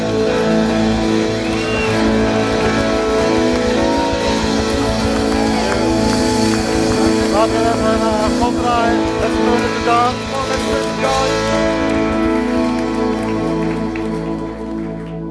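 Steady, loud applause from a standing church audience welcoming a speaker, a dense patter of clapping that continues for about fifteen seconds with sustained music playing underneath, tapering slightly toward the end.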